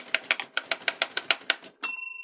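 A rapid run of about ten crisp key strikes on a new typewriter, evenly paced, then the bright ring of the carriage bell lingering at the end. Clear, with no voices.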